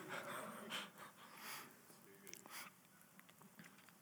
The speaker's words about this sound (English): This is not corona, this gasping for breath.